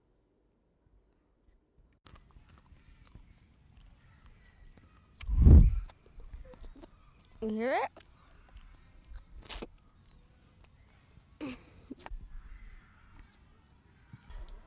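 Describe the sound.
Close-up crunchy bites and chewing of a raw carrot, a handful of crisp, irregularly spaced crunches over quiet background, with a brief spoken question in between.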